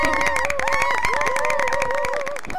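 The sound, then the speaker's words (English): A crowd of classmates cheers loudly and steadily about an amazing time the night before, with whoops and high shouted voices rising over a dense wash of clapping and noise for a couple of seconds. “My fellow classmates, cheer if you had an amazing time last night.”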